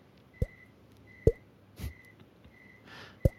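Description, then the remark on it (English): A mouth-made imitation of water dripping from a ceiling into a pool of clear water: about four sharp, hollow plinks at uneven intervals, with a faint, thin high tone sounding on and off between them. “you bested me in this dripping water sound effects game.”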